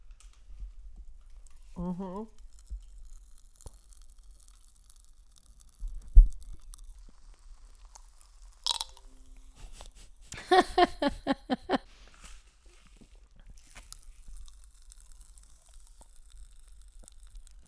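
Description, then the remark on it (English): Faint, scattered crackling and tiny pops from Pop Rocks candy fizzing in someone's mouth, punctuated by a few sharper clicks and brief muffled vocal sounds, including a rhythmic stuttering hum. “And I put more Pop Rocks in there just for fun.”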